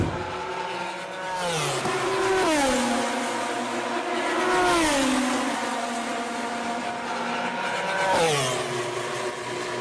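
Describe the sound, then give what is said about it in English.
A high-revving MotoGP racing motorcycle engine screams loudly and continuously, its pitch repeatedly climbing then dropping sharply with gear shifts as it passes. No one speaks. “That's motorcycle, isn't it? Yeah. Okay, we'll give you that. Well done, guys. That's MotoGP.”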